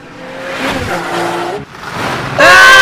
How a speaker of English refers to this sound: They dive for safety as a red Corvette skids to a halt by the TARDIS.